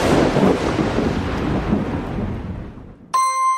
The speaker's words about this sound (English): When a big lightning storm is happening outside, I like to grab a mug of cocoa, find a nice spot inside the house, and look out the window to watch those beautiful lightning bolts.